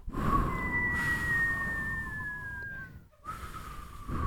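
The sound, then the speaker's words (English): A person whistles a long, steady note that slowly slides lower, breaks off briefly, then resumes, set against a constant low rumbling background noise. “You got to work on your whistle.”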